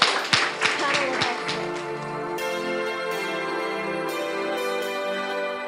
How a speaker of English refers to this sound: But before we finish up tonight, thank you. Can we please give a round of applause to our fantastic...